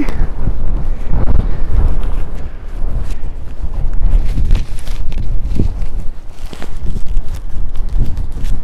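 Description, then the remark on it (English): Strong wind gusts buffet the microphone in a loud, continuous low roar while hiking high along a ridge, with irregular thumps and crunches that sound like footsteps mixed in, and no one speaking. “That's a strong breeze.”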